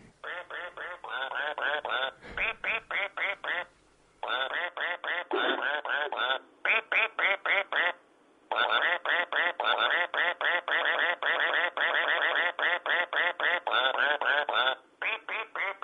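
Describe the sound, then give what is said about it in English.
A battery-powered toy duck, owned for about 15 years, quacks nonstop in rapid, evenly repeated electronic bursts, loud, with only brief pauses between runs and no one talking. “Now, I've got this duck. Yeah. That will squeak.”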